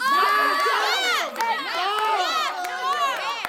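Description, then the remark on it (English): A canned studio audience cheers and shouts loudly and continuously, many overlapping excited voices whooping and yelling together, steady throughout with no pauses. “Ah, the good old sound of a canned studio audience cheering.”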